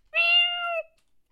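A single drawn-out cat meow, loud, holding a steady tone for under a second before cutting off, with silence around it and no one talking.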